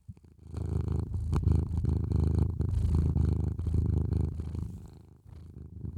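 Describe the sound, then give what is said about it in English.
A male cat lying next to a person purrs steadily, a low rumbling drone that pulses in a continuous rhythm for several seconds, fairly loud with no talking over it. “Let me see if he'll purr for you guys.”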